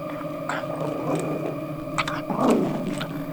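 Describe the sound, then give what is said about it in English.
A dog, Lena, howls on command in a long, wavering tone lasting a few seconds, its pitch sliding and swelling louder near the end before tapering off. No one speaks over it. “Can you howl?”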